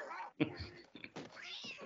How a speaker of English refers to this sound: Oh, the cat.